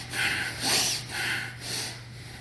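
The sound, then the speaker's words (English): Slow, airy breaths alternate in and out during a guided breathing exercise, about four breathy surges in a row, with a faint steady low hum underneath and no talking. “Breathe in. Out.”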